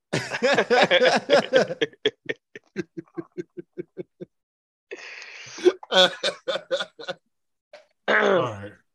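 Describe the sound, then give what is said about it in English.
Someone clears their throat in a drawn-out series of short, rhythmic guttural pulses, followed by a rougher, noisier rasp and a final voiced grunt. “don't be clear your throat,”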